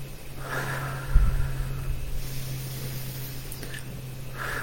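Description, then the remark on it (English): A slow, deep breath is drawn in and then let out as a breathing exercise, a soft airy rush over a low steady hum, with no talking. “You do breathing exercises and then you can breathe out.”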